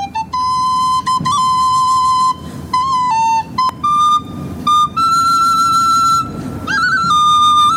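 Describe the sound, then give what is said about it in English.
A tin whistle plays a slow, lilting melody with sustained bright notes and small ornamental flourishes, clear with no voices. “performing the song of the same name on the tin whistle as part of a piece for RTE”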